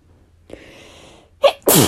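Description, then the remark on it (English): A single sneeze: a quick sharp intake of breath, then a loud explosive burst of air at the end. No one speaks. “Excuse me. And to sneeze.”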